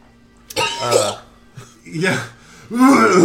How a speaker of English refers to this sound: He's coughing before he like immediately looks up frantic and like... taps his staff on the ground and looks at all of you in your heads.